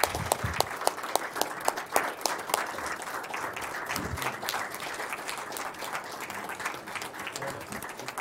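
An audience at a city council meeting in Illinois applauds steadily for several seconds after a battalion chief's swearing-in, the dense patter of many hands clapping at once, even in loudness, with no voices rising above it.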